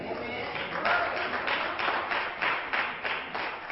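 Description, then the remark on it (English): A steady run of hand claps, roughly nine or ten sharp smacks at an even, unhurried pace, at moderate loudness over a faint background hum. “Y'all, I'll clap for that.”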